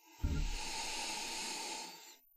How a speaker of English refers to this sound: It's going to be a fairly similar start to the beer. We're going to do a quick swirl in the glass, and then we're going to do a nice just closed mouth, nose sniffing.